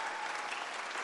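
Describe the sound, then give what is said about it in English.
An audience applauds for the show's interns, a dense, steady wash of many hands clapping at once, holding at an even level for about a second with no voices over it. “Yeah, let's hear it for our interns.”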